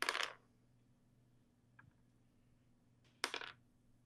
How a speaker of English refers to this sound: And I'm gonna roll 2 more dice because I did explode twice.